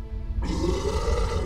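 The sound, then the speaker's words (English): A deep, monstrous roar from a monster bursts in after a brief low rumble and holds loud and rough to the end, echoing through a castle and shaking the chamber walls, with no voices. “The chamber walls shook as another monstrous roar echoed through the castle.”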